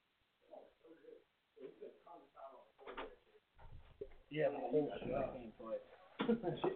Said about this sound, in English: I think I hear the door opening and these sons of bitches coming back in.